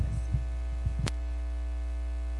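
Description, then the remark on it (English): A steady, loud electrical hum from a sound system drones throughout, deep and buzzing with layered overtones, broken only by a few soft thumps and one sharp click partway through. “How about a humming? Turn off something.”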